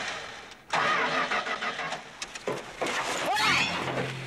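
A car engine cranks loudly, a rhythmic grinding churn that stutters and surges for several seconds as it struggles to start, with no one talking.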